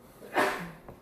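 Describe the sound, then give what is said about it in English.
One sneeze: a short intake, then a sudden, loud, breathy burst that trails off into a brief lower sigh, with no talking around it. “Bless you, ….”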